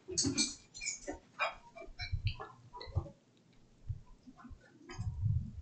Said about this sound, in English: What do I hear? A dog. Honestly, I feel like I hear Darby. Is Darby here? I can't see her!